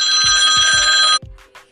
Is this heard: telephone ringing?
yes